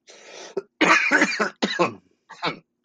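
A person coughs repeatedly, a series of harsh, loud bursts with brief gaps, followed by a final shorter cough and a breathy exhale at the start.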